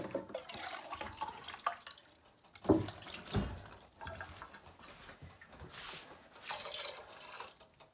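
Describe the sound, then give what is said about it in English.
Water pours steadily from a can into a stew pot, the fourth can being added, a continuous splashing gurgle that swells in a few stronger surges. It is fairly loud, with no talking. “So I'm gonna add more water. So I'm on my fourth can now.”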